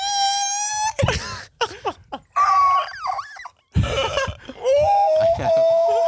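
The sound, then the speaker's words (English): A voice imitates a T-Rex roar but comes out high and screechy: a few strained, wavering wails and shrieks broken by breathy rasps and short pauses, fairly loud, with no words. “I can't do deep enough to do like a T-Rex. Like, I don't know what they sound like right now.”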